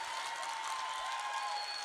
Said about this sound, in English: Give up that applause and keep that applause going for the last poet in the last round of Verselandia 2020.